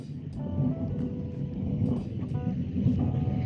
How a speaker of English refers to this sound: Sorry, there was just lightning and it would like confuse me. It's beautiful! There's the thunder.